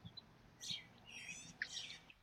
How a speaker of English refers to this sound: I heard two distinct bird calls, one more song-like, and one was more of a chirping, but I couldn't see the birds and I wasn't really able to identify their calls.